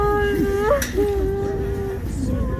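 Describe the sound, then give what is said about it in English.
Soldiers' loved ones weep as the caskets pass the crowds on the way into Saints Peter and Paul Garrison Church in Lviv; a wavering voice rises and falls, broken into sobbing breaths over a steady murmur of background noise. “As their caskets passed the crowds on the way into the church, their loved ones wept for those whom they lost to Putin's invading army.”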